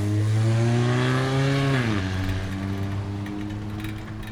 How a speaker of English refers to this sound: Got a pretty nice selection of cars driving by. It's a Volvo, Honda, Buick, Chevrolet, Ford, Mazda, Honda, Volkswagen, Nissan, Subaru, Honda, GMC.